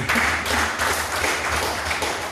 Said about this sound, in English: Praise the Lord. Amen. If you are clapping, clap very much.